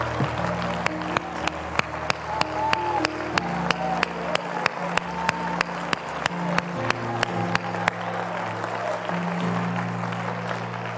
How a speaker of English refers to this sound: Go ahead and clap your hands to Jesus and lift up your voice. Give him praise and glory and honor.